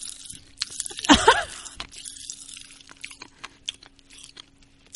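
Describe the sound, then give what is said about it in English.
Pop rocks candy crackles in a mouth: scattered, irregular sharp little pops and snaps throughout, mostly faint, with a brief voiced murmur early on. “They are exploding on my tongue.”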